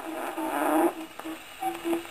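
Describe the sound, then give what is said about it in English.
A man's fart-like raspberry imitating an elephant's trumpet: a loud, buzzy, brassy blast that swells, then breaks into a few shorter honks with a steady low pitch. “Fait de l'éléphant en main d'enfant.”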